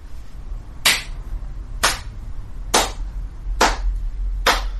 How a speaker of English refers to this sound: Slow clap comes out of the woods. A way to weaken him, I think you mean. And out comes Goody Niska.